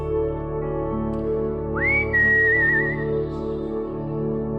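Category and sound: human body sound, person whistling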